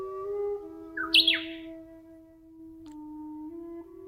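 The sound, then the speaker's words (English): A bush warbler sings a single phrase, a quick bright rising flourish near the start, clear, while a steady low tonal hum runs underneath throughout. “In addition to being known for its song, the bush warbler is also known for its association with plum blossoms, another early spring kigo.”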